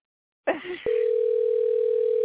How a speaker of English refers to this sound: Hopefully she'll answer. She's going to be like, what are you doing calling me? Oh, answer the phone, dear. Oh no. She's not answering.